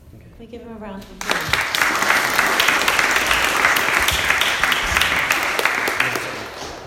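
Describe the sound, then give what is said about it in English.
A voice speaks briefly, then an audience bursts into sustained applause, a dense, steady wash of many hands clapping that carries on loudly for several seconds. “Can we give him a round of applause?”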